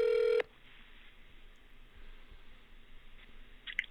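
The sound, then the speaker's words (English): An outgoing phone call rings on the line with a short, loud electronic tone that cuts off abruptly, leaving faint telephone-line hiss and a small click near the end. No one speaks. “Should be ringing.”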